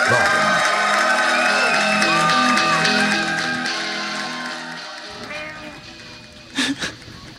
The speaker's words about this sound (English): And now, give a warm round of applause to my friend and yours, Adam Sank.